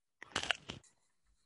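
A short burst of crisp, crackly crunching as someone bites into a piece of pizza, lasting about half a second before fading into quiet. There is no talking.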